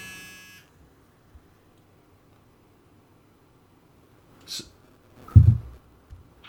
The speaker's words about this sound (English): Oh, no, I got a phone call, unfortunately, and I'm recording through the phone because I have to jury rig because right now my software isn't working.